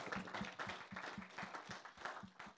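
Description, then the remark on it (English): A church audience claps for Jesus after preaching, in a steady, rhythmic beat, dense sharp hand claps repeating about four times a second, loud and sustained with no talking. “Clap for Jesus.”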